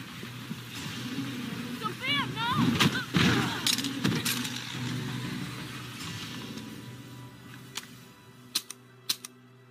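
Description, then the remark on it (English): Several sharp gunshots ring out over a tense film soundtrack as a woman's father is shot, with a couple of loud bangs early on, a voice crying out, and two more quick shots near the end. “as her father is shot, Sophia Falcone goes into a rage”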